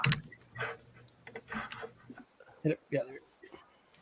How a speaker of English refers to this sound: Who's typing?